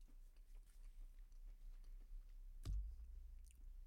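Chewing of a crunchy mince pie, soft repeated crunches and mouth clicks with one louder bite near the end, no talking.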